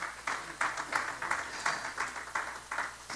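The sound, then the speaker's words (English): An audience claps in praise to God during a morning sermon, steady clapping with a few louder, rhythmic bursts roughly every third of a second, fairly quiet, with no one talking over it. “Somebody give him a hand clap of praise this morning.”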